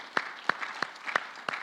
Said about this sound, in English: Let's give the Lord one more mighty hand clap.